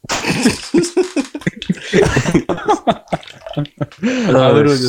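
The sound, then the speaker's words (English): Wet, messy slurping and sucking mouth noises come in a rapid run of loud bursts, mixed with gulps and voiced, grunting sounds, as someone slurps an uncooked raw egg out through a small crack in its shell. “Hey, that's what I sounded like when I was slurping up the eggs.”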